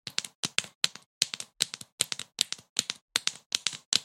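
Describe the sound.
Fingers tap out a quick galloping rhythm like horse hooves, sharp bright clicks grouped in threes and fours, repeating steadily for about four seconds with no voices.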